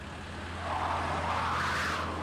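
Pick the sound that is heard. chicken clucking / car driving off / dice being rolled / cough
car driving off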